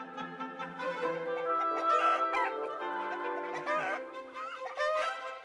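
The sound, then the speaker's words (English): Orchestral music based on a 1727 harpsichord piece by French composer Jean-Philippe Rameau plays a busy, chattering motif of short, pecking instrumental figures that mimic clucking hens over sustained string tones, moderately loud and continuous throughout. “This piece features a clucking motif, almost makes you feel like you're right in the backyard with the hens instead of at this lavish party.”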